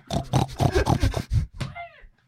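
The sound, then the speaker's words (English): A person's voice imitates a crying pig with a rapid series of snorting, grunting bursts followed by a higher, wavering squeal that trails off, fairly loud. “Is that what a crying pig sounds like?”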